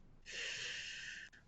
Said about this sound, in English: She's doing some calming breathing exercises right now.